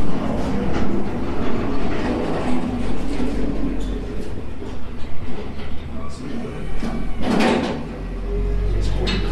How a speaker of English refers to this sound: And now we can hear that they're clearing the road from snow. Like, that's really interesting.